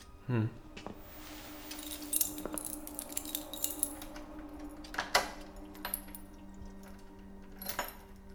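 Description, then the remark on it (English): A metal lantern is handed over, its fittings clinking and rattling in scattered bursts, with a sharper clank around the middle. “Here, hold my lantern.”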